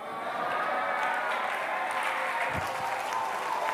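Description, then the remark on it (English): A large audience claps steadily, a dense, continuous wash of many hands with no pauses, loud and sustained from start to finish. “You're clapping the second house right now.”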